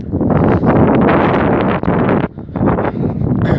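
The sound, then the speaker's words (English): Strong, cold wind buffets the microphone outdoors on a wet, muddy day just after rain has stopped, in loud, continuous gusts with a rough low rumble, briefly dipping before roaring back; no voices are heard. “Thankfully, it stopped raining, but it's really windy and cold.”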